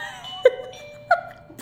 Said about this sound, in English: So that bell was literally my dog pressing her little button that she wants to go outside. Oh my God. So cute.